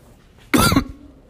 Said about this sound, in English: Sorry about the cough, guys.